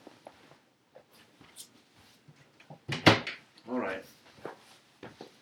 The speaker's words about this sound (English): Hang on a second, I'm going to shut a door. Hang on.